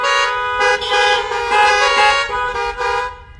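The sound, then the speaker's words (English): Several car horns from people sitting in their cars honk together after a prayer, in a loud, sustained chorus, with overlapping blasts swelling and dipping for a few seconds before trailing off. No one speaks. “All right, here's some honking.”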